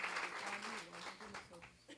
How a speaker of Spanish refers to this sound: Démosle un aplauso al Señor por esa verdad.